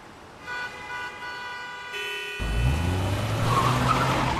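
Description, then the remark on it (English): Cars on a busy six-lane highway in Santiago, Chile: a sustained high-pitched squeal-like tone over faint road noise, then a sudden louder rushing roar of passing vehicles. No one speaks. “Two dogs are on a busy highway in Chile, and one dog has been hit by a car and lies unconscious in the middle of the road.”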